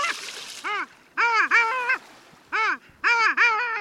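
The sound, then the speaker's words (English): Loud, nasal, yodeling calls of long-tailed ducks, a small cluster of sea ducks about 100 yards out on a bay on a clear, quiet winter morning, given in quick bursts of two or three rising-falling notes with short pauses between, clear over a quiet background. “They're long-tailed ducks, back for the winter from nesting far to the north.”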